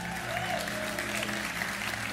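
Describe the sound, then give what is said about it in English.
Only the women in an audience applauding, a steady, dense patter of many hands clapping at an even loudness throughout, with a faint low hum underneath and no voices standing out. “By the way, the only one clapping right now is women.”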